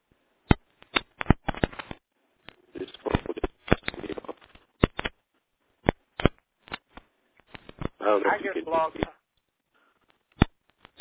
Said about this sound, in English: I think Blog Talk won this time because it'll stop for a little bit, but then it'll start clicking and be choppy and watery and stuff. I don't know how this is going to come in the archive.